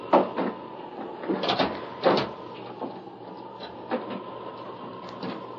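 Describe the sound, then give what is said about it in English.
A wooden house door creaks open in windy weather, with a series of knocks and rattling clunks spread irregularly over several seconds against a steady low background hum, no voices. “We'll be inside in a second.”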